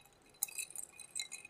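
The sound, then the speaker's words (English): Ice cubes clink against a whiskey glass several times in quick, irregular succession, with bright ringing taps and a light rattle, quiet with no voices. “The wonderful sound of ice in a nice whiskey glass.”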